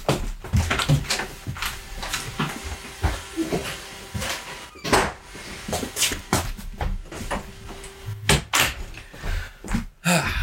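A bedroom door is handled and pushed shut, with a series of thumps, rattles and clicks over a steady background hiss, and no one speaking.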